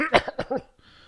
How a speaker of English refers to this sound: Dude, I hope I'm not getting sick. I think you are. I hope not, because I have this tickle in my throat and I just have to like cough every few minutes.